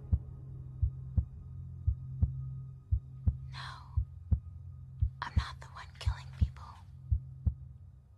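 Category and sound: human body sound, heartbeat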